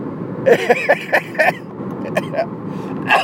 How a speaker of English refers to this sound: Excuse me. Stupid cough.